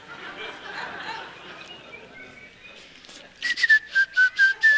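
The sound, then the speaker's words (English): A person whistles a short tune of about six loud, clear, evenly spaced notes, after a few seconds of soft murmuring crowd noise with a hint of light laughter. “All right, that's enough whistling.”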